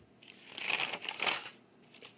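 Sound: turning a paper page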